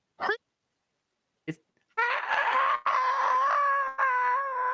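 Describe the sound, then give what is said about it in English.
A voice imitates a screaming skull: two quick, sharp yelps, then a long, loud, wavering scream that carries for several seconds with only a brief break. “Skull is still screaming this entire time.”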